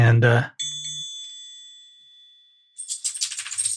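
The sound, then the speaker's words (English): A dinner bell rings once with a bright, clear strike and a tone that slowly fades over about two seconds. A brief voice comes just before it, and a rustling, jingling noise follows. “And the dinner bell just rang, which means it's time for me to give the dog the treat, which means I didn't plan my recording well.”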